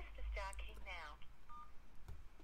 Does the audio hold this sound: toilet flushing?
no